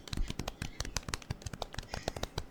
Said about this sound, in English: That's the most polite golf clap we'll ever imagine.